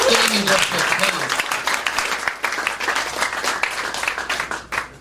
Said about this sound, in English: So give it up one more time for Brody Stevens.